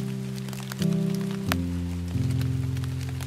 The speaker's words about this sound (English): That's right, real certifiable rain. I'm completely drenched, but it was totally worth it.